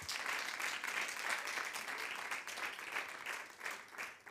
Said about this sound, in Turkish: Hani bir alkış?